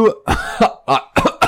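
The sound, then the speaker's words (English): Four loud, harsh coughs in quick succession, each a throaty voiced burst that sounds like a person deliberately imitating an exaggerated cough. “coughing dead loud.”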